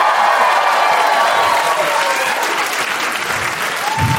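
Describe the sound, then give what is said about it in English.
A sold-out live audience at the Bell House applauds steadily, a dense, sustained wash of clapping with scattered cheers and whoops rising through it, loud and continuous from start to finish. “This is a sold out crowd at the Bell House.”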